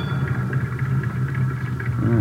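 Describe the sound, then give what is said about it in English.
A car engine hums steadily at low pitch as the vehicle rolls up to a service station on Vermont Avenue in the rain, a continuous even rumble with a faint higher whine above it and no voices. “we drove to the service station on Vermont Avenue where Best was supposed to be employed”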